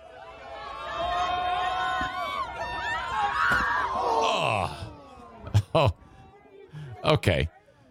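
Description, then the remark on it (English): A crowd of voices yells and cheers loudly for several seconds as a man on the roof of a Jeep throws a woman. The cheering slides down into groans when he fails to throw her far enough, followed by a few sharp thumps and brief shouts. “They're cheering them on.”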